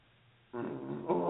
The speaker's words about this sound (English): Hold on a minute. I got a burp.